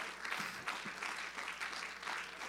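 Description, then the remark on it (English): An audience claps hands together, a dense, continuous wash of many overlapping claps at a steady loudness with no voices standing out. “Let's clap our hands to him right now.”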